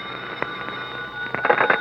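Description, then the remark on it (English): A telephone rings in a room, a steady, shrill electronic ring with rapid trilling bursts growing louder toward the end, with no voices. “Matter of fact, I was leaving my room to go downstairs and buy a dope sheet for the next day's races when the phone started ringing.”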